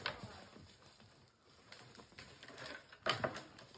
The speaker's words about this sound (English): Locking horns. Dude, the sound of that is brutal.